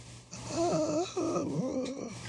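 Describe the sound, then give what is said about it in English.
Heavy, rasping breathing through a mask that comes with a little box inside that does the breathing: two long, loud breaths, one in and one out, with a hollow, mechanical tone and no talking. “This one even comes with a little box inside where it does the breathing.”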